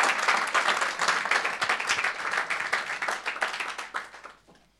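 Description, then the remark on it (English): An audience claps their hands in a dense, steady burst of applause lasting several seconds, then it thins out and fades away toward the end. “Clap for them.”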